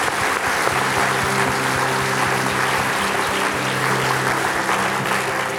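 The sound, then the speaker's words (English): An audience claps steadily for several seconds after a prayer, applauding those who raised their hands, a dense, sustained patter of many hands at an even level, with a low sustained tone humming underneath and no voices. “Would you clap for all those that raised your hand?”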